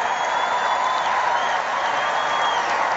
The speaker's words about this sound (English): And you got the cheering crowds and everybody's really excited.